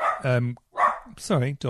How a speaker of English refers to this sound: I strongly agree with what the dog is saying. He's got a point. Give me a sec. Always got an opinion, that dog.